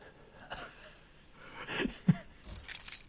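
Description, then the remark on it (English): A truck cab door being opened, with a few sharp latch clicks and a light metallic jangle as it swings, over quiet background hiss. “Let me just open the door.”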